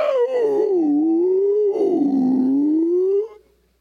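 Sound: voice imitating whale song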